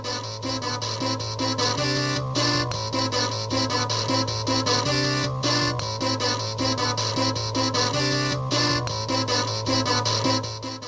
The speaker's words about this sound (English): It sounds awful. Oh, man. They really translated that theme over perfectly, using all the power of the Amiga to pull it off, brother.